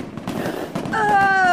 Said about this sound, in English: Oh! Holy shit! Look at the fireworks! Gosh. Wow!